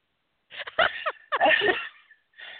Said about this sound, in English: Bless you, bugle horn.